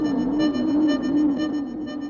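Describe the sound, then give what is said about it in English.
A warbling electronic sci-fi tone signals an incoming subspace message from Danny, humming steadily for about two seconds, its low pitch gently wavering up and down beneath a shimmer of buzzy overtones, with no voices. “Hold on, I'm getting another subspace message from Danny.”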